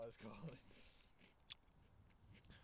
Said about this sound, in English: I'm just munching on this Pocky. So good. Yeah, enough Pocky.